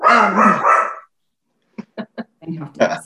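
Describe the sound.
A dog barks in a loud burst during a Zoom video call, then lets out three short, sharp yips in quick succession before a person begins speaking.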